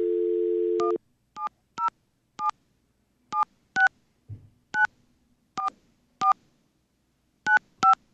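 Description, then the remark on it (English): A steady phone dial tone cuts off, then a quick series of about eleven clear touch-tone beeps, spaced unevenly as a number is punched in to call the Lagunitas Brewing Company in California, fairly loud with no talking. “Get them on the line. Get them on the horn.”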